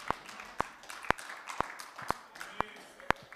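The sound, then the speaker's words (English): An audience at a morning church sermon claps in a slow, steady rhythm, about seven crisp, sharp claps evenly spaced roughly half a second apart over a low, continuous background murmur. “I know you're clapping, but some of you get tore up when trials come.”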